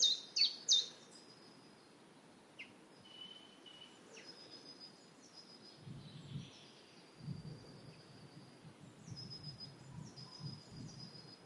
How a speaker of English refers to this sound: I don't know what that really high-pitched thing, I don't know if that's... I'm imagining that's a great tit.